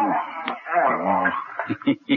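A dog whimpers and whines with wavering, high-pitched cries, then lets out three short, quick barks in a row, fairly loud.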